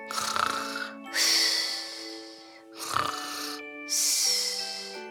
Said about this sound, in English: He came to the forest where the 2 giants lived. The giants were sleeping and snoring under a tree.